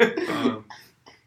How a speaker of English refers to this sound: Oh god, I'm gonna cough again. I'm so sorry.